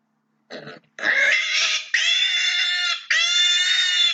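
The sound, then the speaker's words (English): A man imitates a pig, starting with a short snorting grunt and then letting out three long, loud, high-pitched squeals in quick succession, with no other sounds. “Squeal like a pig.”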